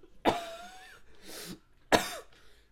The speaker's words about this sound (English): Bitch, you're making me cough. Sorry.